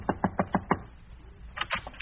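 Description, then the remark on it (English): Gracie, in disguise, knocking at the door: five evenly spaced knocks on a wooden door, fairly loud, followed by a brief pause and a few quieter, higher rustling or scraping sounds. “Yeah, she found out that my radio sponsor was Wild Root Cream Oil, so she disguised herself with a big hat and a veil and knocked at my door.”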